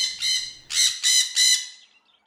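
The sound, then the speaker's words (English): Parrots squawk in a quick series of about five harsh, raspy calls, loud, the bursts running together with brief gaps and no talking. “And listen to those parrots having such a laugh.”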